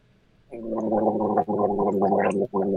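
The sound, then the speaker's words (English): A man gargles filtered alkaline water with a mouthful of galvanized metal nails in a steady, bubbly, voiced rattle that carries a low hum. It comes in three loud stretches separated by two brief breaths, with no talking. “He's gargling the nails. We've never had someone gargle while talking it out.”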